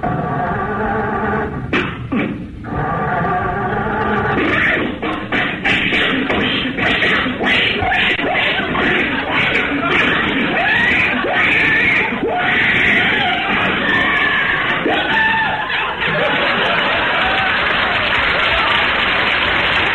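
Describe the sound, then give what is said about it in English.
In a clip from a December 1954 Jack Benny program, a voice imitates Jack Benny's old Maxwell car trying to start, with loud coughing, wheezing sputters and rattling bursts, while an audience laughs and applauds throughout the twenty seconds. “Jack, of course, and sidekick Rochester, and the infamous Maxwell. Okay, start the car.”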